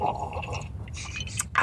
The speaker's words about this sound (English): That was a loud sip, my friend.